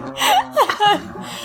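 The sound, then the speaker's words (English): A puppy in Southern California grumbles right up against the microphone, a few loud, throaty vocal bursts with wavering pitch that rise and fall in quick succession, with no one speaking. “is loudly grumbling very close to the microphone, and we can't get him to stop or leave.”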